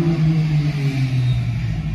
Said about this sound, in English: Motorbike.